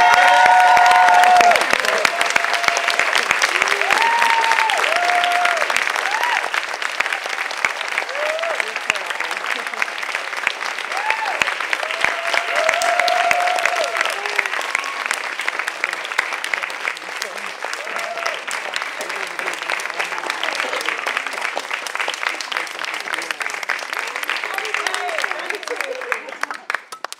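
A large audience stands and applauds loudly and steadily for Kate Bornstein for nearly half a minute, with scattered whoops and shouted cheers rising above the dense clapping before it slowly thins near the end.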